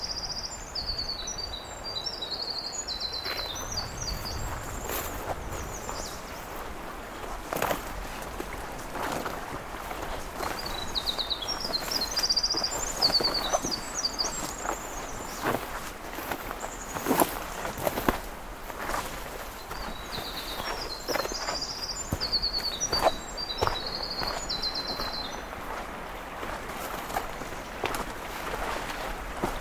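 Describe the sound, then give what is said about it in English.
A winter wren sings three long, rapid, high-pitched tumbling phrases spaced several seconds apart at a stream crossing, over the steady rush of flowing water. No one speaks. “I'm back at the stream crossing where this winter wren is still singing.”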